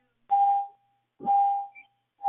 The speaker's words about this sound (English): Hey, I hear a beeping.